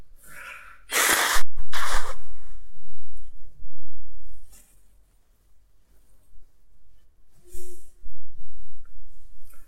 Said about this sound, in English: I'm just going to blow my nose.